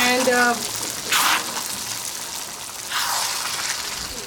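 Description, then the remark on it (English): Water is poured into a pot of soaked beans for cooking rajma, in two bursts, a short splashy gush and then a longer steady stream. A brief tonal sound comes just before the first pour. “Okay, so this is going to have a lot of water, but we just want to cook.”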